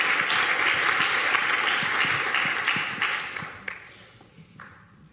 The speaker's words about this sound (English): So everyone likes to be clapped for, so let's show them that we're glad that we're here, that they're here.